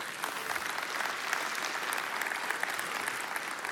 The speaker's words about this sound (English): Now you can clap for that if you want. Come on.